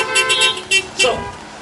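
car horn honking

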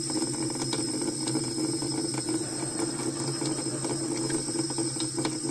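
water trickling

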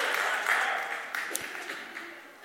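audience clapping

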